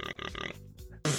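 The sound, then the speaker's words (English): A voice imitates a pig grunting as it is shooed out of a hotel room into the hallway: three quick, throaty, nasal snorts, then a lower gravelly rumble, ending in a sudden loud, harsh burst. “So yeah, you open up the door, and the pig just starts to.”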